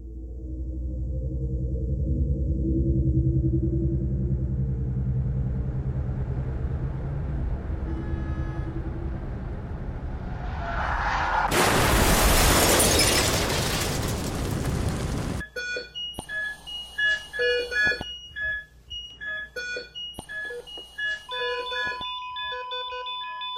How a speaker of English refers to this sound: But instead I felt a car accident, and someone's death.